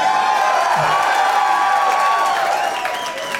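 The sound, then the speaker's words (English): A large live audience at Cafe Istanbul in New Orleans, during the Hell Yes Fest, cheers and shouts loudly and continuously, a dense wall of crowd noise with whoops and high voices rising above it, staying steady before easing slightly at the end. “There's a lot of people here, but I've heard like 1,200 people be less loud than you guys.”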